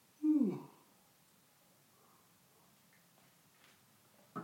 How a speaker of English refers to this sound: Yawning and taking a sip of water.